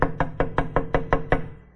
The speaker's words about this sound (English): But let's say you're home in bed. The pastor comes knocking at your door at 11 o'clock.